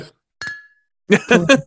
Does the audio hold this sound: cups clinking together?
yes